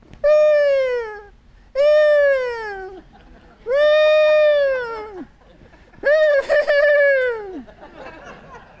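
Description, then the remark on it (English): A whale calling out for a mate: four drawn-out, high, mournful tonal cries, each arching and sliding downward at the end, with rich overtones and short pauses between them. No talking over it. “They say the loneliest creature on earth is a whale who has been calling out for a mate for over 2 decades.”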